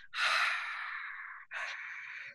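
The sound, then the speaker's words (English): A long, breathy open-mouthed Ujjayi (oceanic breath) exhale with a soft hissing rasp, like fogging a window, followed by a second shorter one. Fairly loud, with no talking. “There's a lot of practices like Ujjayi breathing, for example, which is also called oceanic breath, where you start with your mouth open to learn as if you're fogging up a window.”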